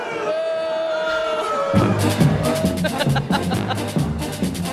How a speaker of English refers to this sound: But I just want to let you know that you have a full crowd of people booing you right now.